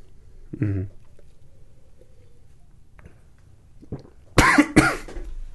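Two sharp, rapid-fire coughs burst out near the end, following a brief throaty murmur and a stretch of quiet background noise.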